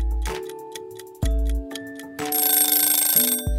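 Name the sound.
kitchen timer ringing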